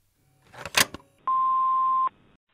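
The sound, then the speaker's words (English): A brief clatter of clicks, then a single loud, steady electronic beep held for under a second as a phone call cuts off. No one speaks. “So the phone call coming off literally when I was getting to the good part”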